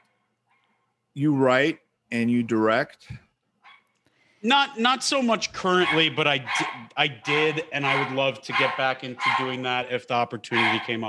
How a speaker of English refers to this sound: I'm sorry. It's all right. Excuse my dog. Somebody, dogs are welcome.